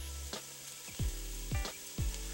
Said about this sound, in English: As soon as the olive oil is warm, I'm going to add 1 diced onion, white onion or yellow onion, and 2 cloves of minced garlic. I'll just stir that up until the onion starts to sizzle.